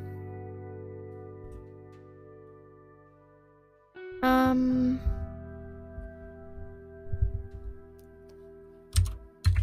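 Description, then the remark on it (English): Clicky computer-keyboard typing in short bursts, fairly loud, over a steady hum of background music, with a sudden louder rush of sound partway through; someone is typing an assignment, all in capital letters. “Oh my gosh, I've typed all of that in capitals.”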